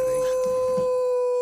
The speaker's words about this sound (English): Oh, wolf's back. We're in the cemetery where the wolves play.